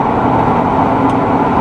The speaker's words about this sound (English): I just passed a school bus. You know, the bus that takes kids to school.